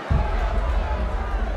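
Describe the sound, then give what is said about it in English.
A boxing crowd at the Dome Convention Center cheers at the world heavyweight championship fight between Floyd Patterson and Muhammad Ali, a loud, steady roar, a dense wash of many voices with a low rumble underneath that holds without pause from start to finish. “Today, the crowds are here for the biggest sports event of them all, the world's heavyweight championship fight.”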